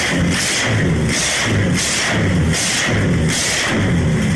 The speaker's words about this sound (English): That sounds really fearsome, basically. They are Jaguar 4.2 XK engines. The two blocks are kind of sliced off at the cylinders and then mated to a bespoke common crankcase so that the two engines can actually sit in unison with one crank.